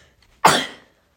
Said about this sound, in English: Oh, hold on. I need to sneeze.